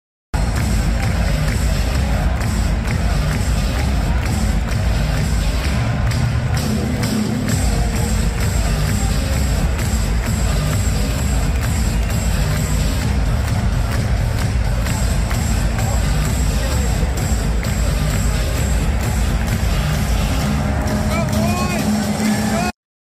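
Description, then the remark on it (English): A large student crowd at an ASU stadium game roars and cheers in a loud, unbroken wash of voices that holds steady for the whole stretch, with brief swells rising out of the constant din. “I knew that the crowd was great, but it wasn't until I saw this video from our guy Res Devil that showed me just how electric the atmosphere was there.”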